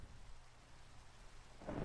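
Steady rain hisses across the whole clip over a low rumbling of thunder, with a louder swell of rumble and downpour building at the very end. No one speaks.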